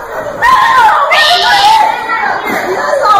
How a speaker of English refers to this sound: Why are they all yelling and screaming now? Maybe everybody wants a piece of the psycho pie.